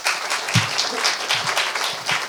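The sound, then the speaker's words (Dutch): A crowd applauds, a dense, steady wash of many hands clapping with a few louder individual claps standing out, sustained at moderate volume with no talking over it. “Applaus voor”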